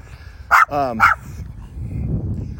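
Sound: dogs barking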